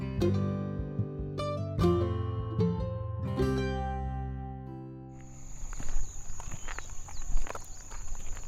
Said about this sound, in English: We are in the goat and sheep barn.